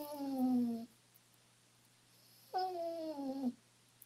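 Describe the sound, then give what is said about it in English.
A dog gives two drawn-out, whiny vocalizations, each about a second long with a slightly falling pitch, separated by a short pause. They are fairly loud, with no talking. “Is that a dog or a cat? It's a dog.”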